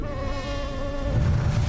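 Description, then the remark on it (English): A steady, high-pitched mosquito whine drones for under two seconds with no talking, a low rumble swelling underneath toward the end. “We always get bitten by mosquitoes in Florida, especially during the summer months.”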